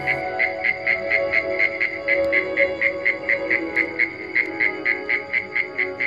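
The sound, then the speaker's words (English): A cricket-like insect calls in steady, evenly spaced chirps, about three per second, clear, over a constant low droning background with no talking. “Still, a wonderful and clear recording of an excellent crickety-type insect thing, Milton.”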